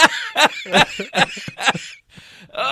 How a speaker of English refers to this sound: Oh, excuse me, I gotta cough up a lung.